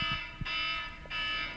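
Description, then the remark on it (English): A loud electronic alarm signaling the end of class blares in steady pulses, a harsh buzzing tone with short gaps between bursts, continuous with no voices. “Oh, oh my God, that's time to go alarm. Back to class.”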